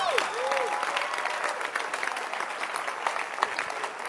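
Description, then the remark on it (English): An audience clapping their hands in a dense, steady burst of applause that holds at a fairly even loudness for about four seconds, with a brief whistle-like tone near the start. “If you are called, clap your hands.”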